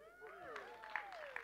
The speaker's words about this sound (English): You got engaged this week. Just give her a cheer.